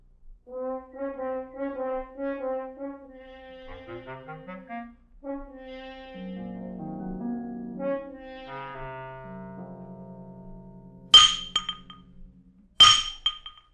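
Two sharp, ringing clangs of a blacksmith's hammer striking metal at a smithy in Carbrook, by a line of willows, spaced a couple of seconds apart, following a stretch of sustained, wavering musical tones with no voices.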